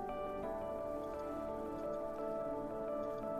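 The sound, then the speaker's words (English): Steady rushing, splashing water of a waterfall washing over rocks runs continuously at an even level, with a soft sustained tonal drone layered underneath and no voices. “Hear the sound of it. Feel it hit you as it washes away down the stream. And it feels so good standing here in this waterfall.”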